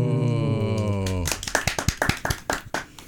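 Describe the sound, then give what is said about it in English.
A sustained tonal note fades out and audience applause breaks in, a run of sharp, uneven claps that stays fairly loud through to the end. “Applause.”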